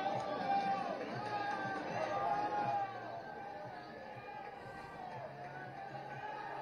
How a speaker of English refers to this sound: The whole crowd is telling him to put it on. He puts it on, and they're cheering for him.